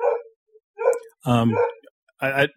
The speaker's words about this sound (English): There's a dog barking in the background. Is that me or is that no, somebody? That's mine.